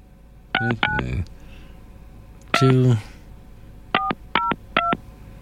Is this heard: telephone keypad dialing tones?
yes